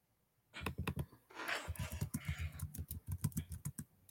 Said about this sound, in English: I can hear them fingers typing.